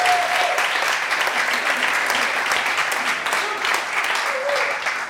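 Sustained applause from an audience for a presenter from Oxted School whose entry was about refugees, a dense, steady clatter of many hands clapping at an even loudness for several seconds, with a faint murmur of voices mixed in.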